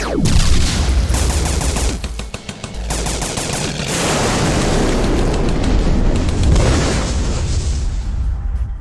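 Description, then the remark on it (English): A loud, dramatic explosion sound effect blasts and then rumbles on for several seconds, with crackling bursts and sustained booming debris filling the sound, no voices present. “Insert cool dramatic explosion effect with me, like Robert Downey Jr.”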